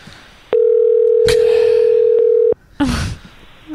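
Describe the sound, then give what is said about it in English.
A single steady ringback tone drones for about two seconds on a phone line, clear and loud, then cuts off and a short burst of crackling noise follows, like a line being picked up. “I hope he remembers to answer.”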